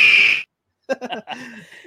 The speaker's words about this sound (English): That's the Eagle soaring, man.